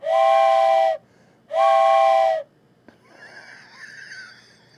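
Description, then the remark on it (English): Two long, loud blasts of a steam train whistle, each about a second with a short gap between, followed by a softer hiss of escaping steam. “it's time for a $5 hype train. Choo-choo.”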